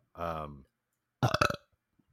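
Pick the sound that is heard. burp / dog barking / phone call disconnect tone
burp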